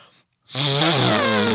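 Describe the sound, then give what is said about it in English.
A loud, buzzy hand fart squeezed from a cupped palm, one sustained low rasp lasting about a second, its pitch wobbling slightly, following a short pause of silence. “That hand farts are cool.”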